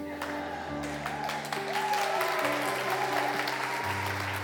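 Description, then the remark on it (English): A church audience claps steadily over sustained organ or keyboard chords, the applause a dense, continuous wash of many hands growing slightly louder partway through. “We're gonna get better at clapping.”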